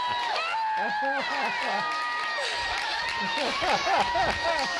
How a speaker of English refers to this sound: It's the queen. Crowd loves their queen.